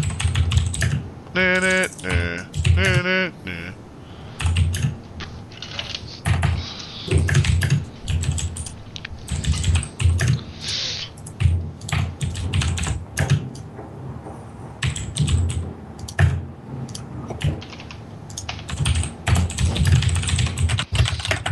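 Loud, rapid clacking of a computer keyboard's keys, with dense bursts of keystrokes continuing throughout and brief pauses between flurries.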